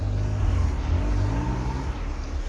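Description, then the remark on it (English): Steady traffic rumbles, engines humming and revving as cars stream past on a busy road, a continuous low roar with no clear gaps between vehicles. “And there's 14,000 cars here, and it's embarrassing.”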